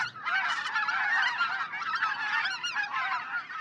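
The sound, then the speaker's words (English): A large flock of white-fronted geese calling continuously, a dense chorus of high, overlapping yelping honks with no pauses, steady and fairly loud throughout. “Classic flock of white fronts.”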